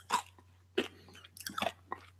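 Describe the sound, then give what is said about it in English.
Wet, crunchy chewing right up against the microphone, with several sharp bites and smacking mouth noises spaced irregularly over a faint steady hum; no talking. “Quit chewing in the fracking mic.”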